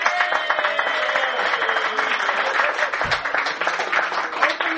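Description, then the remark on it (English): Sustained audience applause during a magic trick as a yellow bandana is retrieved from an audience member, a dense, steady wash of many hands clapping that keeps an even loudness for the full five seconds, with faint crowd voices mixed in. “Retrieve the yellow bandana from the audience member as the rest of the audience applauds.”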